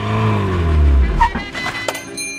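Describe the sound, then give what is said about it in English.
A car drives by, its engine rumbling low and loud with a shifting pitch, then fading slightly over a couple of seconds, with no talking. “I packed them into my car and drove across Denmark, selling them directly to toy stores.”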